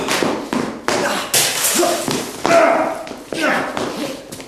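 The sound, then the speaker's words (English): A rapid series of sharp, heavy punch impacts as two people trade punches in a staged fight being set up for the camera, about seven thuds landing at uneven intervals, mixed with loud vocal grunts and exclamations. “Now, you guys are trading punches right now.”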